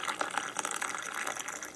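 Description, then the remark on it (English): A steady stream of coffee splashes and gurgles as a waitress pours it into a held-out cup to refill it, continuous for a couple of seconds, with no voices. “I held my cup out so our waitress could refill my coffee as she made her rounds.”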